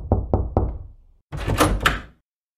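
A police sergeant gives three firm, evenly spaced knocks on a wooden apartment door, loud, followed after a short pause by a louder, noisier rattle lasting under a second.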